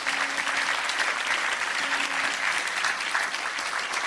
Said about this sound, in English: Church, I want you to give these folks that lifted up their hands a big hand clap today.